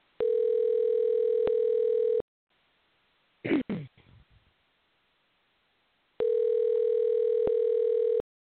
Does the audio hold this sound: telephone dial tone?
yes